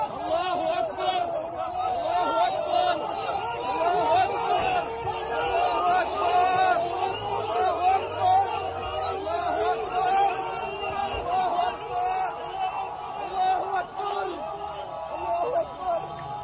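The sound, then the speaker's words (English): A dense crowd of Hamas supporters shouts and cheers without pause around a pickup truck, many voices overlapping into a loud, steady roar of excited yelling that holds for the whole stretch. “So after she died, this is her body laying in this pickup truck with a lot of Hamas supporters cheering into the crowds right before she got raped.”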